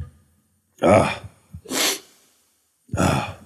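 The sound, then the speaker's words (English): A loud sneeze: a voiced, breathy intake builds up, then a sharp hissing burst, followed a moment later by another heavy breath or sniff. No talking. “I'm going to sneeze.”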